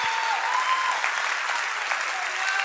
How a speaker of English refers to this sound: Come on, clap, clap, clap, clap. You hear that? It sounds like rain. It sounds like rain. Clap your hands, all ye people. Clap your hands and shout with a voice of triumph. Clap, clap.